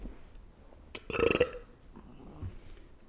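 A single loud, raspy burp lasting about half a second, close to the mic, with quiet room noise before and after.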